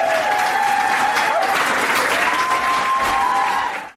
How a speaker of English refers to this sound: I'm going to press the wild applause button.